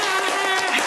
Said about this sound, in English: Some claps from our studio audience.